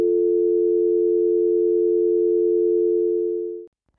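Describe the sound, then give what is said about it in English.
A voice hums a single steady, unwavering note imitating the dial tone of an old phone after it is hung up, holding it loud for nearly four seconds before cutting off abruptly. “Like, you just make a noise of a phone, you know, an old phone hang up.”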